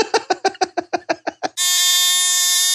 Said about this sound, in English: Where's the taboo buzzer?